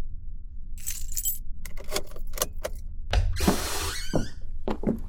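Keys jangle and clink in a series of bright metallic rattles as a maid, told to unlock the door, works the lock; a louder scraping clatter follows as the door is unlocked, over a low steady hum.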